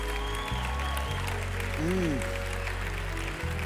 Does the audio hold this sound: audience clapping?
yes